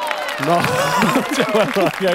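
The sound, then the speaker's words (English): A small crowd lets out a half-hearted cheer, several voices overlapping in a subdued, low-energy whoop that holds steady for a couple of seconds. “There is some low gusto cheering in that cheer.”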